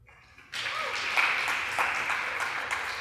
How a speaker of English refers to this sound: It's a blessing. And you know why you Kenyans clap so fast? Because you understand land issues in Kenya.